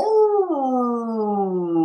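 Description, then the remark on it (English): A person imitates a wolf howl with one sustained, fairly loud tone that drops sharply partway through and then slides slowly lower until it ends. “So, you know, up howling brings the energy up, right? And down howling brings the energy down.”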